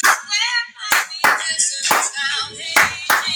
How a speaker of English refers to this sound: Now we got clapping today too.